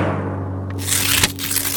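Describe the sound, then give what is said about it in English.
An envelope is torn open to reveal the winner of a board game award. After a quiet stretch with a steady low hum, a rough, crinkly ripping noise starts and keeps going, with one sharper tug partway through. “And the envelope, please.”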